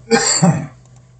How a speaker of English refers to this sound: oh, got a cough. Hold on a second.